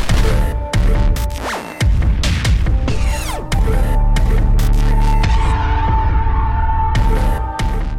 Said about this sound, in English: And then the static took over completely as the transport's main thrusters kicked in.